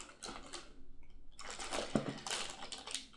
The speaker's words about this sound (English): I'm going to put the battery back in here.